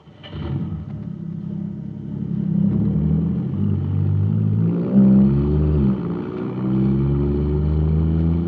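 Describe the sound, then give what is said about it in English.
The engine of a supercharged jet cycle filled with super fuel roars loudly and continuously, its deep droning rumble surging upward in pitch partway through as it revs harder, with no voices. “Wow, this jet cycle is supercharged now.”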